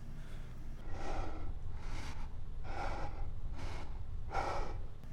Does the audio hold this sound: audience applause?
no